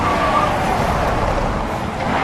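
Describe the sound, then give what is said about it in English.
In a Bridgestone tire commercial, a car engine roars loudly and steadily, with a thick rush of road and tire noise, as the car is driven hard through sharp left and right turns. No one speaks. “Hard left turn in 15 feet. Punch it. Dramatic right turn.”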